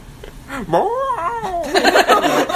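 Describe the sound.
Someone vocally imitates a thrown coyote flying away with a Doppler effect, merged with a Wilhelm scream: a loud, wavering wail that swoops up and down in pitch, ending in a rough, breathy burst.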